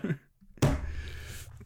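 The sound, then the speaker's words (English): A heavy book, a notebook being got out, thumps down onto a table once, fairly loud, its dull impact trailing into a short rumbling settle before silence. “Big book on the table.”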